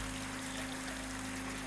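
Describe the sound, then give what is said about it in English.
A steady, continuous hiss of water running from a tap into a sink, fairly quiet, with a faint low electrical hum underneath and no voices. “Jeremy passed out unconscious to the sound of rapturous applause and running water”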